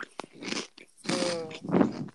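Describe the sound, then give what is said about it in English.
A loud crunchy bite of food, followed by several sharp crackling bursts of chewing over about two seconds, with no talking. “That was a good crunch.”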